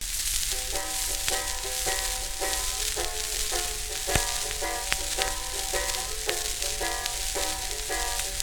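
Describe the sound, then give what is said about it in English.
An old, rough, rare Paramount 78 rpm blues record plays through a thick bed of hiss and crackle, with steady, rhythmic plucked string notes repeating in a short instrumental passage and no singing yet. “It's a Paramount, so that makes it, kind of rare. Well, I'm looking forward to hearing it.”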